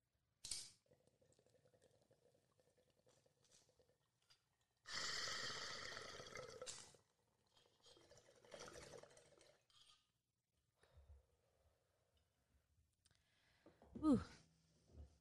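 Low gurgling bubbles of water in a bong packed with a little bowl of Grape Goddess from the Flowery, in bursts between breathy inhales, with a loud, rushing exhale partway through and a sharp cough-like gasp near the end; no one speaks.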